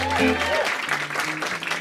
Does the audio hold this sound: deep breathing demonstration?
no